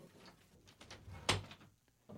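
A door bumps shut with one sharp, solid thud, preceded by faint rattling and shuffling, then it goes quiet.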